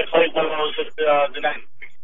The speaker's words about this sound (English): Where are you at? Your phone is starting to break up. Are you on the road? Yeah, I'm actually on the road.